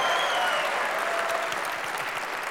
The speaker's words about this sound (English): Oh, that sounds like a golf clap. We're not at the Masters.